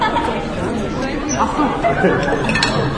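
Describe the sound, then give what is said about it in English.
Steady, overlapping chatter from many diners fills the Blind Cow, a restaurant in total darkness, with occasional light clinks of glasses and dishes ringing out above the continuous murmur of voices. “Eating at the Blind Cow takes some getting used to.”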